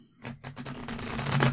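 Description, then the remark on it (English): A deck of cards being shuffled, a quick run of crisp riffling clicks that builds in loudness over about a second and a half, with no talking. “Okay, shuffling up, folks.”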